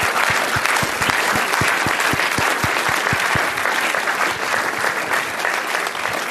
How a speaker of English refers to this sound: Our thanks to our panelists here today and to the town hall for this. So let's give them all a big round of applause.